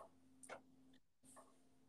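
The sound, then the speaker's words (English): A clock ticks softly, with two distinct ticks about a second apart over a faint steady hum, no voices present. “The Time Lord start the clocks, my friend. Start the clocks early tonight.”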